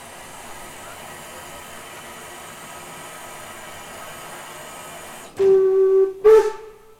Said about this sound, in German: Der Schaffner hebt die Kelle und pfeift. Nun geht die Reise los.